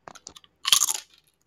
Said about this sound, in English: Oh, I don't like that. Was that pleasant? No, not at all. Wait, can you hear it when I chew with my mouth closed? A little bit, yeah. Perfect, it's going to be great background noise.